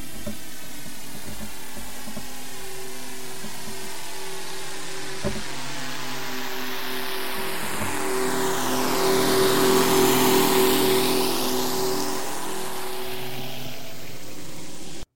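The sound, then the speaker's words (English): A motorboat engine drones steadily as the boat approaches, swells to its loudest as it passes close by, then begins to recede. No voices are heard. “There must be a boat passing by the microphone, right? You can hear it getting closer and getting louder and then fading off into the distance.”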